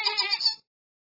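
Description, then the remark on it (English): A single wild sheep bleats once, a short, wavering, nasal call lasting about half a second before cutting off into silence. “Our purpose sounds simple, to put and keep wild sheep on the mountain.”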